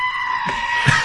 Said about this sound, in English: No, I listened to goats screaming for 10 minutes today.